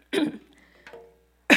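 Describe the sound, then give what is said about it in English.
Two sharp coughs, a brief pause between them, the second cut short at the end, with a faint throaty rasp trailing after the first. “Turning to cough makes no difference.”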